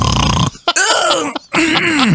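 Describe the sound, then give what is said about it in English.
A voice imitates a pig's snoring with a few loud, rough snorts and drawn-out grunting breaths, with short pauses between them. “Your piggy snores.”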